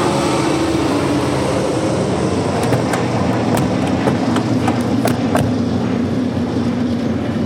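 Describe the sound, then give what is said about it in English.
A Stinson Gullwing propeller plane sails overhead and lands at Rogers Field, Honolulu, Hawaii, in summer 1940. It roars steadily, a loud continuous engine drone with a low rumble and scattered sharp clicks and rattles through the middle, with no voices. “Nick's behind the wheel, Walt's beside him, and Joe stands up in the back seat as a plane sails overhead and lands.”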